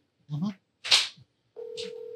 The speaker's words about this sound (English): I'll just call him real quick and see if he answers. Put it on speaker and hold it up to your mic.